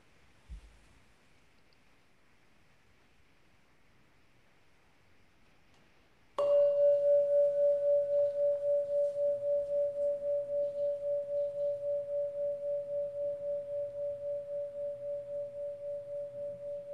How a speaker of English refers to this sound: Shall we enjoy a sound of the bell?